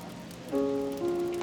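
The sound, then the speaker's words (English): A steady hiss of rain falls throughout, soft and even, while sustained musical tones swell in halfway through and hold over the downpour. “The rain continued to fall.”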